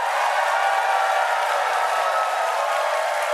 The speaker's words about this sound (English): Wow. Jeez Louise, you almost broke the applause-o-meter. We have a leader so far.